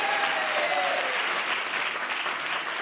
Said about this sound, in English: Clap it up for him.